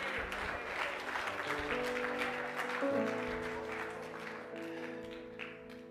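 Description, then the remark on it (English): An audience claps steadily throughout, a dense wash of hand claps over sustained organ chords that shift pitch partway through, fading slightly toward the end. “If you believe that tonight, clap your hands.”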